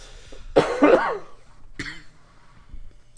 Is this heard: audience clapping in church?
no